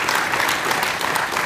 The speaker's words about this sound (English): Can we have one last round of applause, please